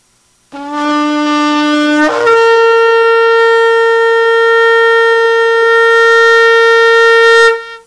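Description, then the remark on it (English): A Yemenite shofar sounds one long, loud, sustained blast, starting on a lower tone and jumping up to a higher pitch after about two seconds, then holding steady until it cuts off. “But this would just be a really good, strong, loud blast, and everybody's shouting, okay? So something along these lines. Now, this is obviously the Yemenite.”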